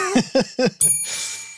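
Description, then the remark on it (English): A small bell rings, a few quick rattling dings followed by a final strike whose bright, metallic tone hangs and shimmers to the end. No one speaks. “This bell is next to me,”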